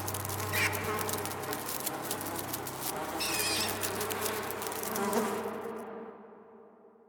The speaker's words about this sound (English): I screamed for my wife and held my head as I collapsed to the floor with the sounds of something crawling in my skull, drowning out everything else.